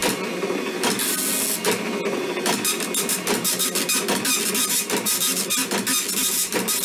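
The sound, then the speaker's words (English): A voice mimics a dot matrix printer, a harsh, steady buzzing rattle with rapid ticking bursts that runs continuously and fairly loud for several seconds, with no talking. “If you figured out that I was making the dot matrix printer sound, 2 points to you, buddy.”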